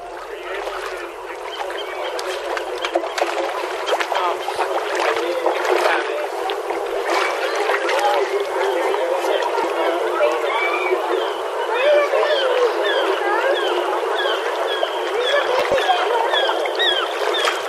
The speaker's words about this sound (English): Seagulls and people doing beach type activities.